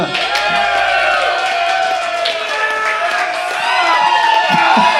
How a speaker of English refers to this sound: So, you know, everyone applauds so it sounds good at the end of the recording.